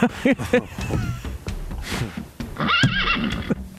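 A horse neighs loudly, a long shrill whinny that rises and wavers near the end, with shorter snorting calls before it and a faint clatter of hooves underneath.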